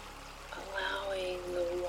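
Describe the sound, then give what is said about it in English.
Steady flowing water, like a stream pouring over stones, runs continuously at moderate volume, with a soft sustained tone hovering above the watery rush. “Feel the warmth of the sun on our face as we enjoy the beauty of the day, watching the current of the water flowing past us.”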